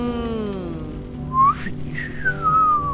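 A loud whistle sounds in two sweeping blasts, the first sliding upward sharply and the second gliding down slowly, over a low steady background hum with no talking. It is blown to wake someone up.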